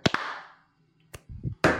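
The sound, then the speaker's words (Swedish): Sharp hand claps land slightly out of sync as a small group tries to clap together after counting 1, 2, 3: two quick cracks with a ringing tail, a lone clap a second later, a low murmur, then a final broad clap burst. “Bra, då kör vi 1, 2, 3 och sen klapp.”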